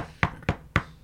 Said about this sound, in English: There's a knock on my door.